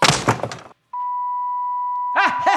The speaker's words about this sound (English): Clear. And then the sound of beeping.